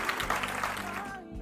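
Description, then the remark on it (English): A church audience at Calvary Chapel Cary in Apex, North Carolina, claps together at the pastor's call during a sermon, a steady, dense, loud wash of handclaps with sustained music tones underneath that thin out near the end. “Can somebody clap your hands like you know what I'm talking about?”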